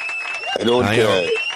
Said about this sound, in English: I don't understand the clapping and wooing. The clapping and wooing for a game like that. Well, it's the in studio audience that's clapping and wooing for you because they love what you have to say.